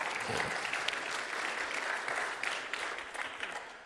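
A crowd applauds steadily, a dense wash of many hands clapping at moderate volume that holds evenly for a few seconds without any voices standing out.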